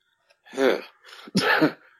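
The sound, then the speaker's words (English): A single loud sneeze: a short voiced intake builds, then a sharp, breathy burst that fades quickly. No one speaks. “God bless you.”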